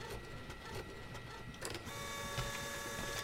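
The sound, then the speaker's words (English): A small thermal ultrasound printer whirs steadily as it prints an ultrasound image, its mechanical hum settling into a sustained tonal whine about halfway through, moderately loud with no talking. “Printer works, too.”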